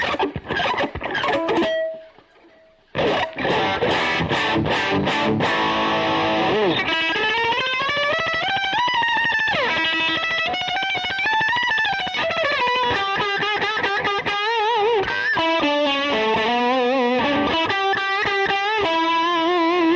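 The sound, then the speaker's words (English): Heavily distorted electric guitar played through a distortion pedal, loud, saturated, buzzing notes and bending lines, with a brief near-silent gap early on before the overpowering fuzz-drenched tone returns and dominates throughout. “can't even use this distortion. It's like way overpowering.”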